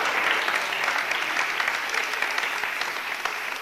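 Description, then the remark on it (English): A crowd claps steadily for several seconds for visitors from Scotland, a dense, sustained wash of applause from many hands, with no voices rising above it. “Give them a clap all the way from Scotland.”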